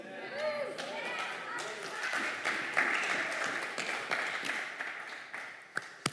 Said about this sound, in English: Clapping for myself.